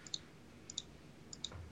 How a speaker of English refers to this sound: I've been using my clickety clack keyboard